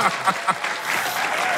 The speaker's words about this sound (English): Can we get some applause for that? Okay, yeah, yes. Applause.